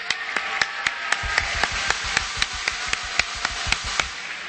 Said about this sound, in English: So please join me in giving them a very special round of applause.